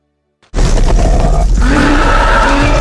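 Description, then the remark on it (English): A loud, guttural cave troll roar from Peter Jackson's Lord of the Rings, made from tiger and walrus sounds with a tiger inhale and Canadian lynx exhale, bursts in after a brief silence and sustains with a rough, growling texture, its pitch shifting and bellowing. “The cave troll is sort of a combination of tiger and walrus.”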